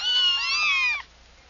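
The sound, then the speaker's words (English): High-pitched kitten cries, several thin wavering mews overlapping for about a second, fairly loud, then cutting off into near silence. “Kittens. If they're crying out loud, well, all right, get the hot water going.”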